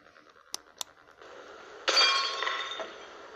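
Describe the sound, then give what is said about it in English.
Two sharp taps on glass, then a loud shattering crash as a pane breaks, bright ringing shards tinkling and fading over the next second, with no voices; someone is breaking the glass to get in during a break-in. “Somebody just broke the glass to get in.”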